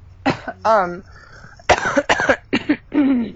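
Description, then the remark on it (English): A congested person coughs repeatedly in loud, harsh bursts, some wet and rattly, others with a voiced, groaning tail, in an uneven series with short gaps between them. “fighting some congestion.”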